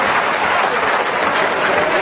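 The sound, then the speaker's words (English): A recorded crowd cheers and applauds, a dense, steady wash of clapping and voices that stays loud for its whole short length. “Since I play this music, I get to cheer for myself.”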